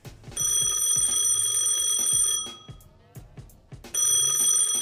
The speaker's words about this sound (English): On exiting the pool area, I heard the ringing from the phone at my desk.